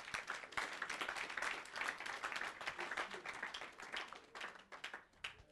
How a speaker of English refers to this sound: Oh, if you want to clap, clap.